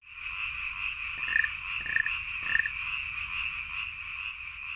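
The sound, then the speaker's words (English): A dense, steady chorus of frogs trills continuously, with three louder croaks breaking through near the middle. No voices. “Early the next morning, Kirby arrived on schedule to transfer the frogs from the cabinet to the freezer.”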